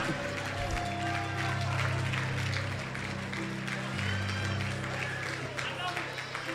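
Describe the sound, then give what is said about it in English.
A crowd claps for Jesus continuously for several seconds, a dense, steady patter of many hands, with a low droning hum underneath and some voices mixed in. “Clap for Jesus.”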